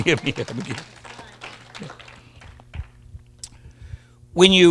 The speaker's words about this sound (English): Give the Lord a hand clap of praise this morning.